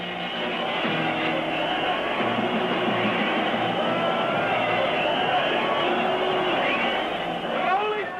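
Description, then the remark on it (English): A rioting concert crowd in the Netherlands in 1964 shouts and screams nonstop as people hit one another, attack security and try to storm the stage: a dense, steady roar of many voices with high shrieks rising out of it, sounding thin and muffled like an old recording. “You can hear people literally going crazy, shouting, hitting one another, attacking security services, even trying to storm the stage.”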